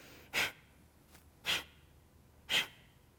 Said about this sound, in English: In this pranayama, we're going to literally exhale forcefully, inhale passively. It's like coughing through your nose. You're going to contract the abdomen to throw the breath out. Looks something like this.